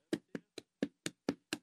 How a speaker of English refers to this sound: Yep, this is the school. All right, let me go up the steps here.